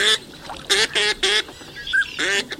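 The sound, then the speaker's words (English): Ducks quack loudly in a wetland on the Central Flyway, a handful of nasal, buzzy calls in an uneven rhythm, with fainter bird chatter in the background between them. “A third of North America's northern pintails rely on the food-rich habitat here.”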